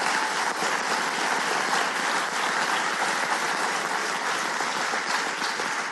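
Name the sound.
audience round of applause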